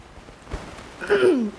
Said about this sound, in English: Excuse me, I can't hold the mic away while I cough.